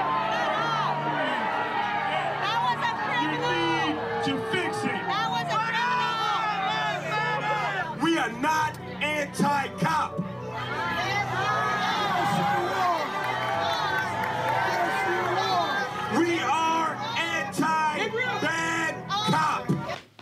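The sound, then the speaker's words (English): A large crowd jeers and boos a speaker, many voices shouting over one another, asking about black-on-black crime, in a loud, continuous din that holds steady for about twenty seconds. “So they're jeering him.”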